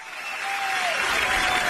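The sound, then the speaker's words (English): A golf gallery erupts after a putt, with loud, sustained applause and cheering that swells and holds steady, dense and bright throughout, with a thin tonal whistle or shout gliding downward early on. “We do have, if you want to play some audio of the actual, the putt that, you know, and the crowd reaction when he.”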